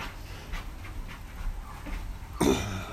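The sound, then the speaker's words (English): A dog pants in quick, steady breaths while scratching an itch in a rhythmic rustle, with a louder burst of movement near the end, on a porch with soft rain falling in the background. “One of our dogs has joined us here on the porch in the rain and decided that they have an itch that just can't wait to be scratched.”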